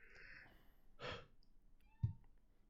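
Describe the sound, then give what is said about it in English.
A person yawns once, a soft, breathy drawn-out exhale, fairly quiet, followed a moment later by a brief low thump, with no talking. “This episode's going to be so short because half of it's me yawning.”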